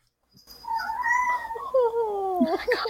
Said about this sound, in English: Oh, I like this because I got to hear your cats.